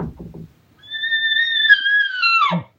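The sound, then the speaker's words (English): A voice imitates a soft bull elk bugle: a brief low grunt, then a steady, high whistling tone held for almost two seconds before it drops off sharply at the end. “You're either going to hear him give him a little chuckle, or you're going to hear him kind of go.”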